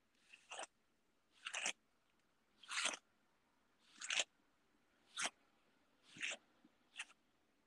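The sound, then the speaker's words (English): A wig being combed: seven scratchy, rasping strokes at a fairly steady pace, each a short bright swish of bristles through hair, with quiet gaps between and no talking. “No, I'm combing my wig.”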